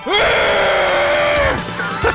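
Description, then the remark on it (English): A man lets out a loud, sustained scream of frustration lasting over a second, then it breaks off into quieter rustling and a brief vocal sound. “Let me lower your volume and scream”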